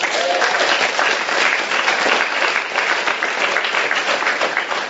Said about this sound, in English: And so a round of applause